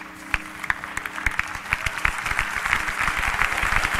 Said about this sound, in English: Put your hands together and praise the Lord, somebody. Let about 500 women clap your hands and give God praise. And brothers, don't let the women do it on their own. Join in a resounding praise.